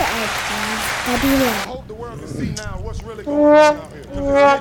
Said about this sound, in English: Get some more air horns, buddy. Clap, air horns, I want all that shit.